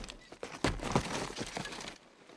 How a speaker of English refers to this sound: So let's take a listen to the Foley track of Helm's Deep. Check this out. All that movement of all those people. Footsteps.